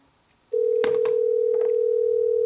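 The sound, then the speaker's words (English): A steady, loud telephone dial tone as a phone call is placed to a Petland store starts abruptly and holds one unbroken pitch, with a couple of short clicks or handling noises near the start and a faint rustle later. “We'll call a sex shop that would sell, like, crotchless underwear.”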